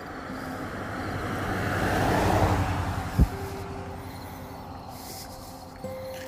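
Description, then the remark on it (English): A car drives by on a road early in the morning, its broad tire-and-engine whoosh swelling to a peak and then fading away. A single sharp thump follows, and no one speaks. “And yes, early in the morning, we still have traffic on this darn road. Everyone zips around here early in the morning.”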